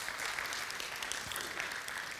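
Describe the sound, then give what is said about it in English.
An audience applauds the Lord steadily, a dense wash of many hands clapping at an even, sustained loudness with no talking over it. “Yeah, come on, let's give the good Lord a good round of applause.”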